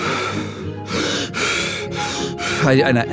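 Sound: forceful rhythmic breathing technique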